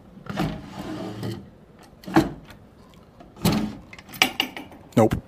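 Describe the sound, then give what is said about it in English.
Dresser drawers slide open and shut several times, each a short scraping rumble ending in a wooden knock, with brief pauses between and faint rustling in the background. “We have some drawers here. Anything in these drawers?”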